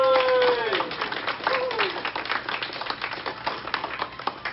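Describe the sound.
A small audience breaks into steady applause, dense overlapping claps lasting several seconds, opening with a rising, whooping cheer from one voice over the first claps.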